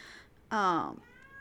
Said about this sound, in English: So we're just going to deal with listening to the kitty in the background. It'll be fine. He's okay. He is well fed. His litter box is taken care of. Is he going to puke? Or are you just being upset?